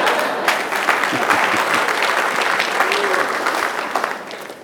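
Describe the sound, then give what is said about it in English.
A church audience applauding, a dense, steady patter of many hands clapping at once that carries on for several seconds before tapering slightly at the end. “You ain't gonna clap about that?”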